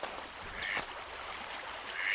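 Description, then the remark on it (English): Mallard ducks quack in short, scattered bursts on the water, as a drake performs a courtship display for a female, over steady outdoor noise and faint water, with a few brief bird calls mixed in. “Look at the mallards here.”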